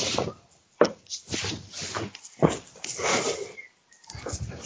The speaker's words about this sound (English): I'm going to have to go and feed my cat. She is not shutting up. Okay. Well, it's because I've just got in. I've let her out to go to the toilet, and now she's coming meow because she wants food.